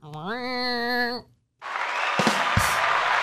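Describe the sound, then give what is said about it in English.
A held, buzzy tone with a slight rising bend, a brief pause, then a dense, steady wash of applause with scattered sharper claps running to the end. “Okay, enough applause.”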